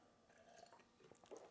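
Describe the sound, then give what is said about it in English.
Soft, wet mouth noises of someone sipping a drink, a few small slurps and swallows, quiet and brief with no talking. “All right, let me take another sip of my drink because I'm talking a lot.”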